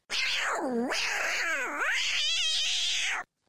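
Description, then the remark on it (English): A female cat yowls loudly and continuously for about three seconds while trying to get in, its voice swooping down and up in long wailing bends before breaking into a wavering, trembling cry, with no talking. “I just had a real life situation of my pussies trying to kill me. Real. Your cat's that crazy?”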